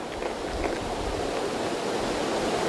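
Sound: ocean waves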